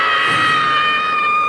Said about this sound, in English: And the mother's scream.